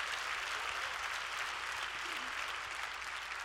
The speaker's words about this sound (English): Clap your hands and give praise to the Lord.